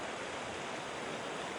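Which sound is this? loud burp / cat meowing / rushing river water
rushing river water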